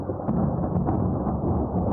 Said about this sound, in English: A blistering blast of thunder snow.